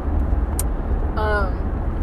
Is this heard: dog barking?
no